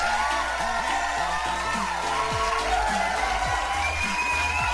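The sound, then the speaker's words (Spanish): A crowd applauds and cheers steadily, a dense wash of clapping mixed with whoops and shouting voices, sustained and fairly loud for the whole stretch. “Un aplauso.”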